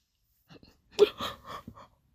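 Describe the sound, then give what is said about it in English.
A single yawn: a few soft breathy catches, then a sharp intake swelling into a drawn-out, wavering moan that fades out. Fairly quiet, with no talking. “Sorry, y'all, that yawn came out of nowhere.”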